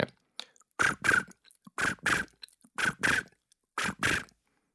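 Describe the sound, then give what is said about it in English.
A foley imitation of crickets chirping: four evenly spaced pairs of loud, scratchy, crackling bursts, repeating about once a second with silence between, and no talking. “Oh, that'd be crickets.”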